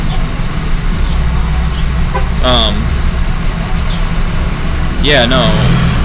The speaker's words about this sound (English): We're gonna let this truck pass real quick. Super Duty going on there? 4x4 Sierra.